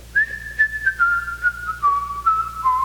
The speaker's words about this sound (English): But not only in public places, we need to have some praise when we're out on the job. I don't see anything wrong with whistling a nice song.